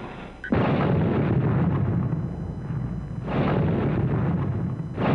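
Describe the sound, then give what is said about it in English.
A sudden explosion bursts in at half a second, followed by a sustained roaring rumble of blasts and debris, with a second loud surge around three seconds, all heavy: explosions ripping through the Los Angeles Times building early in the morning of October 1, 1910. “Early in the morning on October 1st, 1910, explosions rip through the Los Angeles Times building.”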